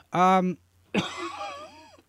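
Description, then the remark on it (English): A loud voiced throat-clearing sound, followed after a short pause by a harsh cough that trails off into a rasping, groaning exhale, from a person with a lingering cough. “I apologize for the coughing, folks.”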